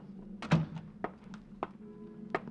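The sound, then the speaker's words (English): At police headquarters at noon, a door opens with a heavy thunk, followed by several lighter knocks and taps against a low steady hum. “Noon at police headquarters, and the opening door.”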